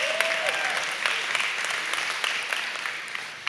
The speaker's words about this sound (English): Those are beautiful lyrics. You're allowed to clap for the name of Jesus.